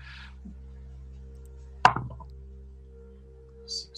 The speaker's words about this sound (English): Sound like a 20-pound dice. Metal dice, man. They thunk.